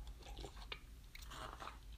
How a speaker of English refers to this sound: A little slurp.